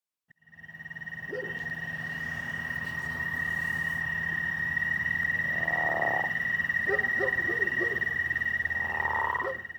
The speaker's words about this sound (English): I'm just back here to add a short epilogue of sorts with a nice chorus of snoring crawfish frogs in the background in order to cover a few points.